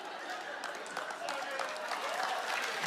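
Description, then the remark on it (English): An audience claps steadily for a few seconds, a dense wash of many hands at moderate volume, with some voices murmuring underneath. “Yeah, I'm getting claps because you know what it's like.”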